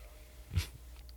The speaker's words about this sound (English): Shut up, dog.